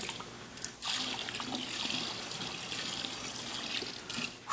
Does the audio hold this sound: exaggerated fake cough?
no